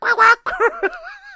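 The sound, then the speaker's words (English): A person imitates a rooster-crowing alarm set for 6:15 a.m., with a few quick, breathy syllables that rise into a long, wavering held note, fairly loud. “forgetting that I had previously set a 6:15 a.m. alarm with this ridiculous rooster thing going on.”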